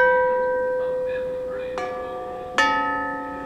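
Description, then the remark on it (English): 8-foot-tall tubular bells ring out with long, sustained metallic tones, struck again twice in succession, each new strike adding a bright chime over the lingering decay of the last. No voices. “They lead up to the 8-foot-tall tubular bells.”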